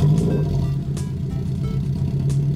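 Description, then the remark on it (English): A gasoline-burning internal combustion engine under the hood of a car idles steadily with a deep, continuous rumble and a strong low hum, fairly loud, with a few faint clicks on top and no talking. “Powerful internal combustion engine under the hood of your car is what makes this all happen.”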